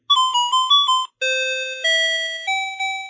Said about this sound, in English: That's my talking alarm clock from 1983. It woke me up for many, many years. Talking time. This unassuming little metal box with a tiny yellow button was my first hands-on experience with synthetic voice.